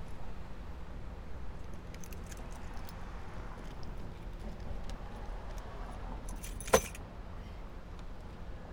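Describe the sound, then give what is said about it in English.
Car keys jingle and clink lightly in a few brief bursts over a steady low rumble of background noise, with one sharper metallic clack near the end. “I'm almost ready here. Get my key.”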